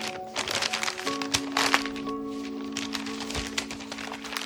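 Paper being folded and creased into a paper airplane, with a run of crisp crackles and crinkles and a few sharper snaps, all over a steady low tonal hum in the background.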